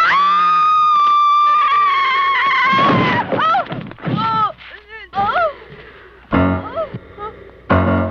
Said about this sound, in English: This is just the scream. You know, there may be some other context clues in some of the clips, but mostly you're going to be getting screams. All right, hit me with that scream. All right, here we go with screamer number one.